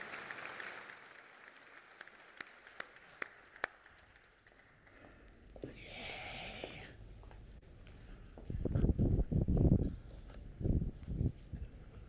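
audience applauding

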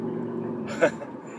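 motorcycle passing by

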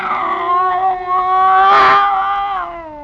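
cat yowling

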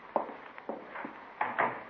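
door being closed

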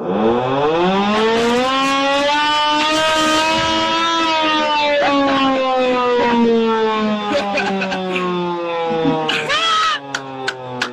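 air horn sound effect

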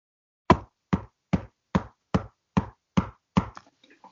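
knocking on wood

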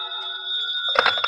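telephone bell ringing

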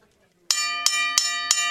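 bell being rung

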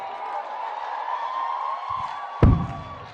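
audience clapping and cheering

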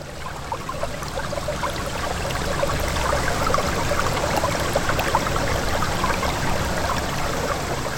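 water running over rocks

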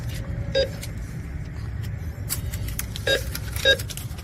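cars driving by

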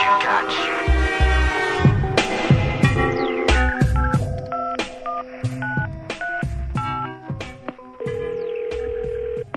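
telephone keypad dialing tones

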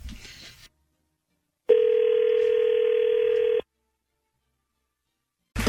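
telephone dial tone

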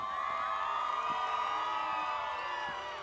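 crowd cheering

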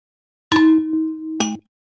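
glasses clinking

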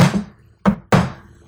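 knocking on a door

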